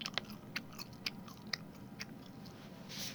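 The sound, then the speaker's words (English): Wet open-mouthed chewing on beef jerky, with repeated lip smacking and crunching bites in an irregular rhythm, no talking. “Is that a synonym for smack your lips and chew with your mouth open?”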